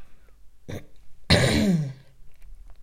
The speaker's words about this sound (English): I need to cough, but I don't want to cough. Let's see if I can get through this.